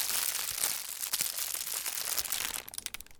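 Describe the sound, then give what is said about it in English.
A plastic bag crinkles and crackles, a continuous dense rustle with sharp snapping bursts scattered throughout, moderately loud and with no voices. “I mean, if you think about it, a plastic bag is awesome. It's smooth and stretchy. It crinkles and it crackles.”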